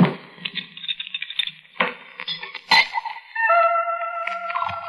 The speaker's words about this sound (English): I poured out the drink.